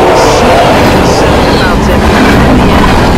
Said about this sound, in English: our apologies, we couldn't hear you because of the train in the background.